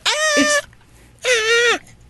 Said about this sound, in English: I know it because it's the one they put goat screaming to.